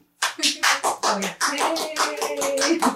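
Steady hand clapping starts after a brief silence and continues throughout, a quick run of sharp, bright claps with a faint tonal hum or voice underneath.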